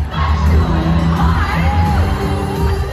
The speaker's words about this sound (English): Oh my gosh. This is such an overwhelming experience. There's just so many people, and they're all like stomping in time to this very loud drum.